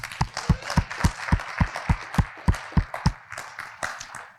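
A church audience applauds the volunteers and ministry leaders, with a steady, evenly spaced clapping beat standing out over a dense wash of scattered hand claps, fairly loud and without talking.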